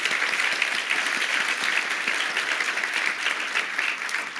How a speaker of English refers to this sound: Another warm round of applause and warm welcome to Sasha Yurich.